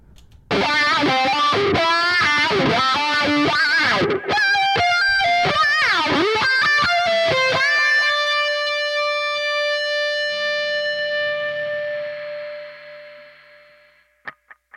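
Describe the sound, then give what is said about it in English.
A heavily distorted electric guitar, run through a Neural DSP Nolly amplifier and a mixing console emulation, plays a fast, expressive lead solo of a jingle melody with bends and runs, then holds a final note that rings out and fades into a trailing echo, with no voices. “And that's the lead guitar, solo guitar.”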